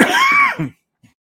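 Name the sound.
cough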